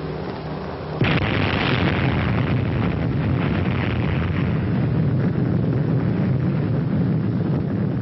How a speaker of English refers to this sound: There's the target. Bomb away. The atom bomb detonated about 500 feet above the water.